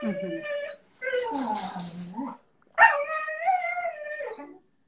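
A Belgian Malinois puppy whimpers and yelps in three drawn-out, wavering bursts of high whining cries with short pauses between them, loud and alone without other sounds.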